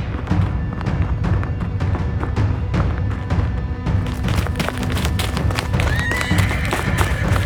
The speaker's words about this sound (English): Oh, hell no. A carriage? Get the horses.